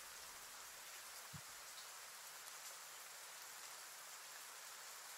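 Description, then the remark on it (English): Heavy rain pours down in the middle of the night in a dense, unbroken hiss that stays steady throughout, with one brief low thump near the start, no lightning and no voices. “No lightning yet. Just a heavy rain.”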